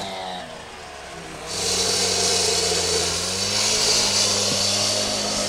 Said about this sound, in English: And so I'd say right now about half of the concrete here is gone. They've been working all morning, hammering away at the concrete.